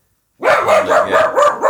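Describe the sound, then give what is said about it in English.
Dogs bark loudly in a rapid, excited run of about five or six yaps after a brief silence, with no talking; the dogs have just seen a cat out the front. “I will confess, my dogs have just seen a cat out the front.”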